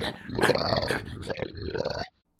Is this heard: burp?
no